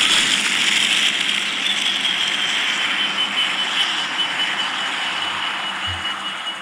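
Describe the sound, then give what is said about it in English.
A loud, steady roar from a Tesla being started up and revved fills the whole recording, a dense rushing drone with a harsh high whine, holding near constant with no one speaking. “So let's just start up my Tesla here. All right, here we go. Let's get it revved up.”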